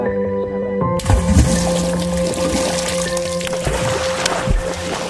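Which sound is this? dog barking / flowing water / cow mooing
flowing water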